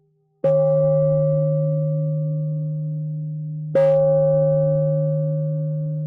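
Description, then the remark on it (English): A thick, flat festival gong, used as an alternative to a low bell, is struck twice, a few seconds apart. Each hit rings out as a loud, focused low tone with a clear pitch that sustains and fades only slowly. “That's this one, this thick, flat gong.”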